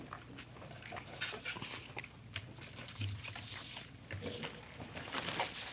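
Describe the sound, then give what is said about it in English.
Wet chewing and biting of a hot dog with mustard and sauerkraut, with irregular smacking and crunching bursts over several seconds and a low steady hum behind, no talking. “All right, take a bite.”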